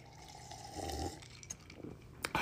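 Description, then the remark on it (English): Gulping of cotton candy flavored water, with a few wet swallows and small liquid clicks, followed by a sharp smack of the lips at the end; no talking. “Cotton candy flavored water I'm drinking from a certain big box retailer which shall go unnamed. Right there, right down the old gullet.”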